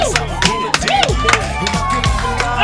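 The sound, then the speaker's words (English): A crowd of people cheering and screaming together, loud and continuous, with many overlapping excited voices rising and falling, along with scattered claps and thumps. “What are they screaming about?”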